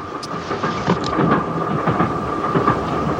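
The Orient Express train in a James Bond movie rumbles steadily along the rails, with loud continuous noise, repeated rhythmic clacks and a faint high whine running through it. No one speaks.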